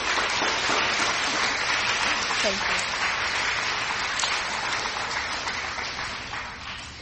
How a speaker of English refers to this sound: Did everyone here have a certificate in their hand? All right, time to clap.